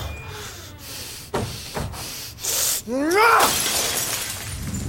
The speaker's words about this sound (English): They said you smashed the fishbowl. Yeah, I did,